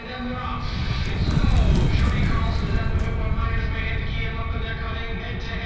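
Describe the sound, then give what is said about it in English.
Horse hooves clip-clop in a steady, continuous rhythm as Horse 6 keeps circling round and round, partly buried under a busy wash of background voices and crowd noise, holding at a fairly even level throughout. “He keeps circling round and round.”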